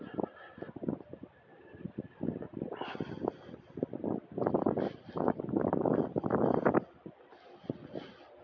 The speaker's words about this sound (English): Sounds of walking. It's raining. It's been raining on and off all day.